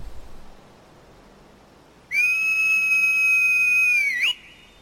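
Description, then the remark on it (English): After a quiet stretch, a loud, clear whistle rings out alone, holding one steady pitch for about two seconds before ending with a quick upward flick, the kind used to call a horse. “time to whistle for the horse.”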